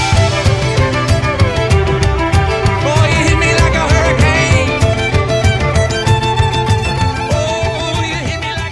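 A theme song plays at a steady, loud level, with a driving percussive beat, full low end and bright melodic lines, and what sounds like a singing voice weaving through the middle.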